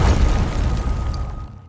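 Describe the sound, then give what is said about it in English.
A deep, rumbling explosion at a mine in northern Canada, in a film trailer, roars with heavy low-end energy, sustaining loudly before tapering off into a fading rumble over about two seconds. “An explosion at a mine in northern Canada traps 26 miners in, and there's a race against time to get the equipment needed to save them.”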